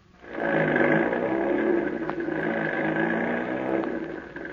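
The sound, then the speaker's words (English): A heavy truck engine starts up and growls steadily as the truck pulls a trailer carrying Rocket away from the ranch, a loud, continuous rumble that holds for several seconds with no voices. “Get on that truck. Don't swing that trailer on the curves.”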